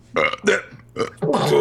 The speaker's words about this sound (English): What, the burp? Yeah. Like the whole time.